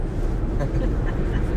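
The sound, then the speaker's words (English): Steady, droning road noise inside a 2014 Toyota Prius driving about two hours (130 miles) from Detroit, a dense low rumble with a faint hiss above it, continuous and unchanging throughout. “We're in a 2014 Toyota Prius.”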